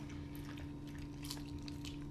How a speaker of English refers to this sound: All right, so crunchy, crunchy lettuce.